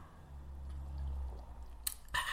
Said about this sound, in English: I'm just sipping my coffee here.